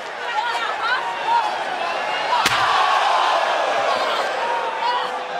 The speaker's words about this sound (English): Sasha Banks has returned with a vengeance, with an evil, evil vengeance here tonight. Natalya taken out, and now Becky Lynch, chair to the spine.